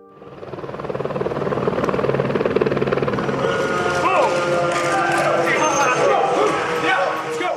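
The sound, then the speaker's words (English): A steady police helicopter drone fills the scene as police sirens wail with rising and falling tones, the police and helicopters following an ambulance to UCLA Medical hospital at 4 a.m., layered over a loud, busy background with some indistinct voices. “As you can hear, police and helicopters have followed the ambulance to the hospital.”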